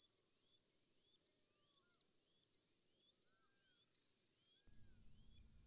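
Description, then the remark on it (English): An Indian bushlark sings a steady series of eight thin, high, rising chirps, evenly spaced and repeated alone without talk, with a brief low rumble entering at the very end. “Very few differences in appearance separate them, but their songs are quite unique and interesting.”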